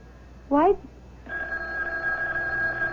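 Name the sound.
telephone ringing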